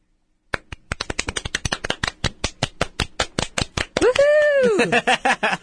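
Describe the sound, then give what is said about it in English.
A small group claps in a quick, steady patter of sharp hand claps for several seconds, and a high, rising voice cheers over the clapping near the end. “That was Yay. Our little applause.”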